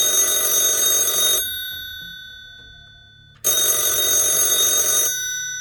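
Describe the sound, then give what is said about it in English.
An old-fashioned telephone bell rings loudly in two long bursts with a pause between, a call coming in to police officers in London, the rattling metallic clang filling the quiet with no one speaking. “Wait, he's on the phone right now.”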